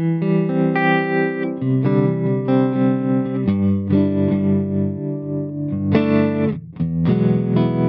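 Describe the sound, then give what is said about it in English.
Electric guitar played through a tremolo pedal, strumming sustained chords with a gentle pulsing wobble in volume. It is loud, with no voices. “Then I have a tremolo.”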